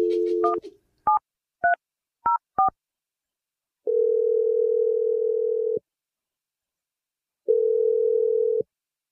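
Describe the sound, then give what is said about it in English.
A steady dial tone cuts off, followed by five quick, separate touch-tone beeps as a number is punched in, then two long, even ringback tones with a pause between them. “Take that energy and I'm dialing the number right now.”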